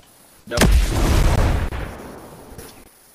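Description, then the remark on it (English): A helicopter wreck explodes with a sudden sharp crack and a heavy low-end roar that rumbles on for about a second before fading into a lingering crackle. “It's blowing up.”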